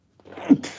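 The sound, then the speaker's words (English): A single loud sneeze: a short breathy intake builds into a sharp burst, then trails off into a brief hissy exhale. “Oh, sneezing. Bless you.”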